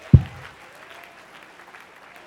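An audience claps their hands in steady, dense applause to give God praise, opening with a brief low thump before settling into an even, moderate wash of clapping that carries through the whole moment.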